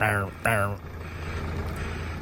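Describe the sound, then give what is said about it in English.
Two loud, buzzy reversing beeps sound back to back from a Dublin Bus bus at the Broadstone Depot in Phibsborough, Dublin, then fade into a steady low engine rumble and mechanical clatter from the bus. “So this correct is the sound of the bus reversing.”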